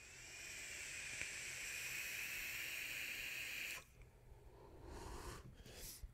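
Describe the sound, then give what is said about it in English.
A single-coil e-cigarette with its airflow fully open sizzles in a steady hiss for about four seconds during a vape hit, then cuts off abruptly, followed by softer breathy rushes of air. “Need some more wattage. Do-do-do-do. Yeah. It's vaping awesome.”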